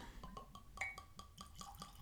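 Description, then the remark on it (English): Jameson Irish whiskey glugs out of a 750-milliliter bottle into a glass in a steady run of quick, rhythmic gurgles with faint glassy ringing, fairly quiet, with no talking. “Let's pour it.”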